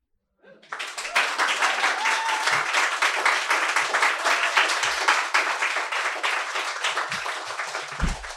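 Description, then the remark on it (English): A crowd at a literary reading applauds a reader after a poem, breaking into sustained, dense applause after a brief quiet start, many hands clapping steadily at a loud, even level for several seconds with a few low thumps underneath. “Let's keep clapping”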